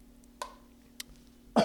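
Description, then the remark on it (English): Several short, sharp bursts stand out against a quiet background, the last one loudest, like a person coughing while cooking and melting something. No one speaks. “Certain things make me cough when I cook, isn't that funny?”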